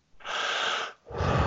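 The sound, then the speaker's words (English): Labored, gasping breaths of a person having trouble breathing: a long, harsh, airy inhale followed after a brief pause by a rougher, heavier breath, loud and strained with a wheezy edge, no talking. “I'm sorry, I'm just having a little trouble breathing right now.”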